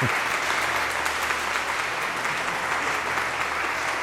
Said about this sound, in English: Please thank him for doing that, and enjoy his wonderful gifts. So get an applause.